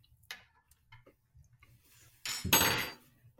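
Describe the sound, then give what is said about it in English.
Shot glasses clink together in a final goodbye toast: a few faint taps and knocks, then one loud clink that rings briefly before fading. No one speaks. “This is our last goodbye shot. Cheers. Cheers.”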